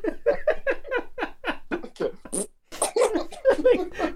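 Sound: voice imitating a fart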